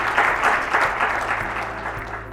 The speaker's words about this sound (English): Thank you. We're so grateful for the work that you're doing on behalf of these patients and for taking time out of your very busy schedules to be here with us today. Can we have a round of applause for our experts?